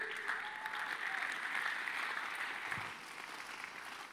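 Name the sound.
audience clapping hands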